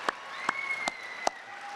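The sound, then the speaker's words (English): Applause for Iowa faith leaders at an event, heard as four sharp, evenly spaced claps about every 0.4 seconds, fairly quiet, over a faint steady hum with thin sustained tones. No one speaks. “So I want to thank you, and you're in the room, and I just want to give you applause because you, the job you do is incredible.”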